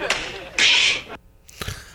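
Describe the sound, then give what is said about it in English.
The handshake sound effect from the sitcom Fresh Prince, the handshake of Will and Jazz: a sharp slap, a loud airy whoosh, then another quick smack, all punchy with no voices over it. “Fresh Prince. You are correct. The handshake.”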